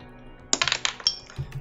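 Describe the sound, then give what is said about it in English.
Dice rolled during a game clatter across a table in a quick burst of sharp, bright clicks, then fall off the table with a couple of soft, low thumps. No one speaks. “That fell off. I'm going to re-roll that.”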